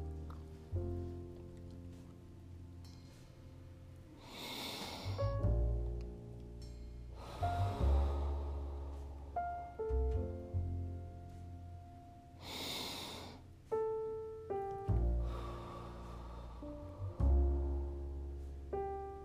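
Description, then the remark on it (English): Two slow, deep breath cycles, each a long airy inhale through the nostrils followed by a drawn-out exhale, clear over soft, sustained instrumental music, with no talking. “On the count of three, we're just taking deep breaths in through our nostrils, and then we are breathing out.”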